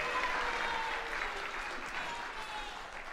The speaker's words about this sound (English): Give these guys another round of applause for sharing their faith this morning.